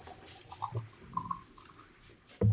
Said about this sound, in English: Well, that was a good sound. That was a tall glass someone just poured. I'm using the Spooner glasses just because I like knocking a little bit of the head off.